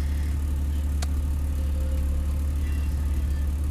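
A car engine idles with a steady, low rumble that holds an even level throughout, broken only by a single sharp click early on. No one speaks.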